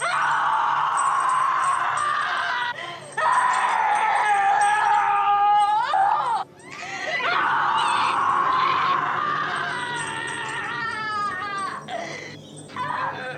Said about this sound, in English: That dinner scene. And that screaming. It's harrowing. It really, like, she is doing such a great job getting across how terrifying it is.